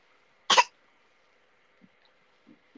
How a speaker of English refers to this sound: No, just a little cough. She's fine.